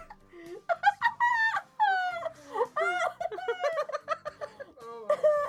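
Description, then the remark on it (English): A played recording of the so-called Courtney bark from YouTube: a dog barks in a rapid run of high, warbling, yodel-like yelps, pitch sliding up and down between short bursts, fairly loud with no talking. “Every time the Courtney bark.”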